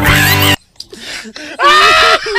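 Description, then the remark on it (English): At the end of a song, a loud, harmonically rich scream bursts out for about half a second, then after a short gap a strained, high-pitched cartoonish wail rises and wavers before cutting off. “Just go to the end where he just screams out.”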